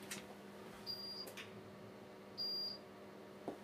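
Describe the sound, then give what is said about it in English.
A stove alarm gives two short, high-pitched electronic beeps about a second and a half apart, each a steady tone over a low background hum with a few soft clicks. “My stove is putting on alarm, so I quickly take off the alarm button.”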